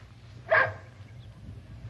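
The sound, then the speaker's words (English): A single sharp dog bark rings out during obedience training with treats as rewards, then quiet follows over a low steady background hum. “Stay now. Stay, boy. Good boy. Good dog.”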